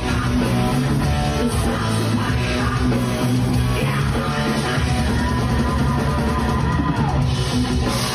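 A live rock band in Ho Chi Minh City plays a heavy metal cover, with dense distorted guitars and drums pounding continuously at full volume, a raw shouted vocal cutting through the thick wall of sound, said to shout the name of commentator Martin Tyler.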